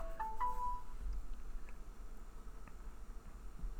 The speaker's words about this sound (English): Pause for Nicole, phone call.